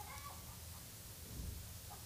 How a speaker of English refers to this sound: Man, the chickens are loud right now. Y'all hear that? I'm going to be quiet just real quick, just so you can hear the chickens.